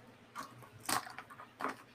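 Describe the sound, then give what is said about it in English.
Micron pens dropped into a small container make three light, clattery knocks spaced irregularly over two seconds, the middle one sharpest, all fairly quiet with no talking. “I'm gonna put all of my Micron pens in this little container.”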